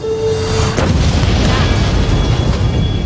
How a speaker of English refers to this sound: An explosion rocks the city today.